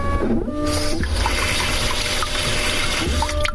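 A steady, hissing spray of water from a toilet bidet washing, spraying onto a towel laid over it, with a continuous rushing sound and faint tonal hums running throughout, no voices present.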